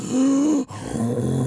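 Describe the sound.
A person voices a low, guttural monster growl imitating a squashed-up dretch, one sustained rasping grunt that breaks off briefly, then resumes as a rougher, rumbling snarl.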